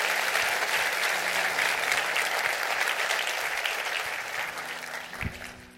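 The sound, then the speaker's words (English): An audience claps hands in a sustained, dense burst of applause that holds steady before gradually fading toward the end, with no one speaking over it. “Clap your hands and receive the word of the Lord today.”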